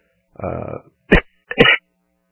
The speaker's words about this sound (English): Sorry about that. Didn't quite hit the cough button quick enough.